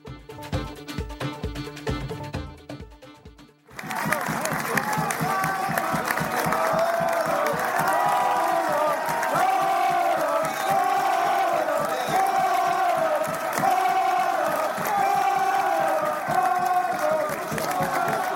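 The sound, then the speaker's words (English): A large rugby crowd at half time, with the score at 13-0, cheers and chants loudly and steadily, voices swelling in rhythmic waves, after a few seconds of a different, patterned sound at the start. “it's 13-0 at half time and the crowd are happy.”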